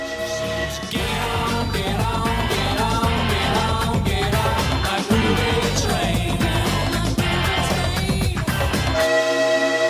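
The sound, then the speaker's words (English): A train horn blares in sustained tones over the steady, rhythmic clatter of a rolling train, loud for nearly ten seconds, with no talking. “It's all aboard that bloody movie train.”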